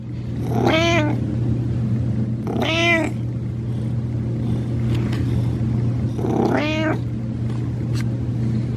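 Three drawn-out cat meows sound at irregular intervals, rising and falling in pitch, over a steady low hum with no one talking.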